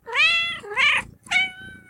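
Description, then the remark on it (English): A house cat named Karen meows three times in quick succession, fairly loud, with drawn-out wavering cries and a short pause before the last one. No one speaks. “and I'm joined here with renowned vocalist, civil rights activist, and house cat, Karen.”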